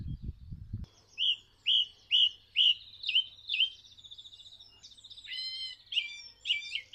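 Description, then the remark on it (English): A songbird in a bush sings a rich, varied song, repeating each bright whistled note two or three times before switching to a completely new phrase, with a faint low hum in the background. “The bird in this bush here is making the most amazing variety of sounds.”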